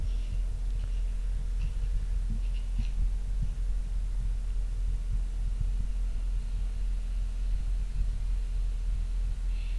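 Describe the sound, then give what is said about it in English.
An underground stream running beneath a brick wall, heard through a stethoscope: a muffled, steady low rumble with irregular soft thumps and a constant low hum underneath. No one speaks. “Water. Yeah, an underground stream.”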